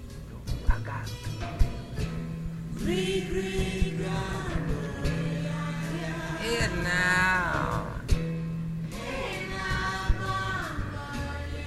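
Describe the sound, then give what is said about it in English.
A crowd of cats meowing over one another, a dense overlapping chorus of rising and falling cries that swells in the middle and keeps going for several seconds, with a few sharp clicks. “That's a lot of cats. Too many cats, dog.”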